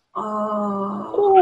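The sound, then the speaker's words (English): Mocha, a female dachshund-beagle mix dog, whines after hearing something: one loud, steady, nasal whine held for about a second, then a second cry that slides downward in pitch. “She hears something, and so she's, like, freaking out.”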